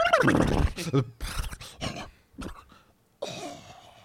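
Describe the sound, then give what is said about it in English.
A person vocally imitates a horse whinny, a loud, raspy, wavering cry followed by a few shorter bursts, with no other sounds around it. “Excellent impression. Thank you. Thank you. I've been working on my horse.”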